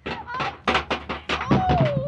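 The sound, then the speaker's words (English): A man is knocked off a ladder during a scuffle and tumbles down: a rapid series of heavy thumps and clattering knocks, followed by a wavering, falling tone that trails off as the crashing continues. “You knocked him off the ladder.”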